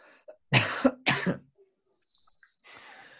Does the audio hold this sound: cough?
yes